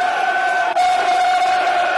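A football stadium crowd cheering on the Lions in a match against Forest roars steadily, a dense sustained wash of many voices with a bright tonal edge, holding loud and even throughout with a brief dip partway through.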